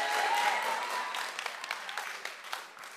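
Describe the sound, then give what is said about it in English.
A crowd applauds steadily for the senior pastor at a gathering with kids, dense overlapping claps forming a broad wash that gradually thins out toward the end, with scattered individual claps standing out as it fades. “Give him one more round of applause, everybody.”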